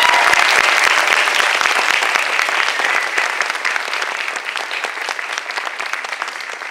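A crowd claps steadily in a round of applause, dense overlapping hand claps that start strong and gradually ease off slightly over several seconds, with no one speaking.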